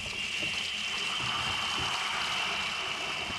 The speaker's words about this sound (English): Phil, what's that noise? It sounded like water. It's nothing, honey. It's just Julius changing fingers.